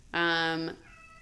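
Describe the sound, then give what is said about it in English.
A single loud, drawn-out meow from a pet cat, Pickle, meowing to be picked up and coddled. It holds a steady tone for about half a second before cutting off, followed by a faint, quieter tonal trailing sound. “It's just meowing to be coddled.”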